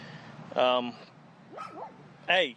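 Small Bichon Frise dogs give two loud, high yappy barks about two seconds apart, with a thinner, wavering whine between them, with nothing else around.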